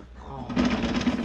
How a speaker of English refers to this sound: Did you hear thunder? That's snoring. They have a man sleeping in that bed. Why, the window's vibrating.